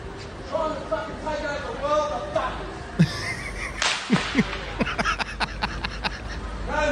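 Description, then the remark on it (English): A whip cracks repeatedly, a couple of sharp snaps followed by a quicker run of loud cracks, with murmuring voices and crowd noise in the background. “The whip cracking PM.”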